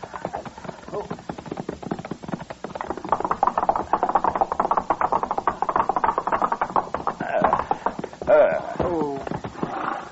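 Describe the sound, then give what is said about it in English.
Horse hooves clip-clop in a steady rhythm throughout, with a short whinny-like cry rising near the end. “Ease up, Chester, so we don't scare the horse.”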